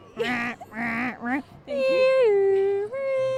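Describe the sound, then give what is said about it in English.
Someone vocally imitates a European car alarm siren, one remembered from Rome: three short, wavering hoots, then a long steady tone that drops to a lower pitch and steps back up. “there was a car alarm that I remember very distinctly.”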